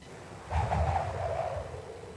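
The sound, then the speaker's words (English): A thin, wavering whistle of wind through wires, from a sound effects disc, rises and holds steady for a couple of seconds over a low, gusty rumble, fairly quiet and with no voices. “a bit of wind through wires.”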